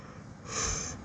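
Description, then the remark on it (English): A breathy yawn swells up in the second half, a soft airy rush of breath that grows louder before trailing off, with no talking. “I'm yawning, but I'm very sleepy.”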